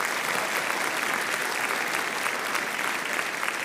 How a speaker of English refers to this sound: Can you please give them a round of applause for everyone who's worked so hard?